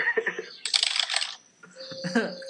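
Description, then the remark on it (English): A quick, loud burst of clacky typing on an IBM mechanical keyboard about 20 years old, with rapid keystrokes running together for under a second and brief voices just before and after. “I'm telling you, man, I have an IBM keyboard. It's like 20 years old.”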